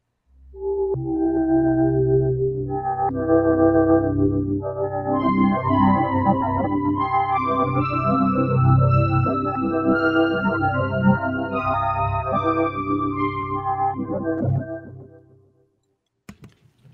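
A keyboard synth pad holds warm sustained chords for about fifteen seconds, with a brighter, higher synth line layered on top, changing notes over the steady bed before fading out.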